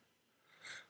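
A single short, breathy sneeze bursts out near the end after a moment of quiet, fairly soft and hissy rather than loud, with no talking around it.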